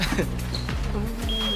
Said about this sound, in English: When the buzzer pop, nigga, you stop.